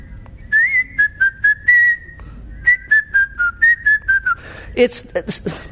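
Someone whistles a bouncy melody in two short phrases of quick, evenly spaced notes with a brief pause between them, ending with a few breathy, airy sounds.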